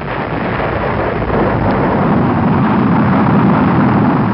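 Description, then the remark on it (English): A rocket lifts off with a loud, continuous roaring rumble, dense and crackling across a wide range, holding steady throughout without any voices. “Most modem launchers, such as Europe's Arlene 5, are very complicated and weigh hundreds of tons at liftoff.”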